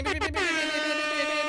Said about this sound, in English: Here's an air horn that they can't hear.